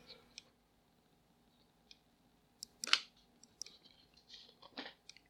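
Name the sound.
sipping water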